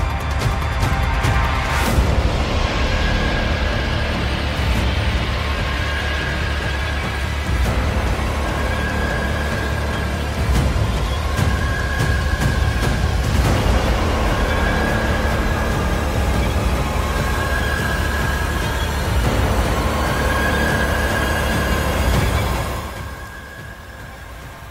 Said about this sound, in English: Must use scary sounds sometimes to wake people up out of their trances. This is actually my ringtone, because I think about the idea of spiritual warfare as a constant, ever-present reality, that you can get so sucked into just existing, maintaining.